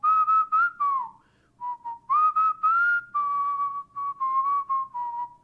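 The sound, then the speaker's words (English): A man whistles a tune, clear and fairly loud, in a string of short bouncy notes and longer held tones, with a brief pause between phrases and no talking. “Most importantly, however, he has never stopped whistling.”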